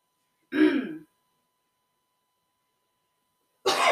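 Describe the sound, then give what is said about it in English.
A harsh cough rasps out, followed by about three seconds of silence, then a second sharp cough bursts in at the very end. No one speaks. “Ain't it funny that when I start talking about this, I start coughing?”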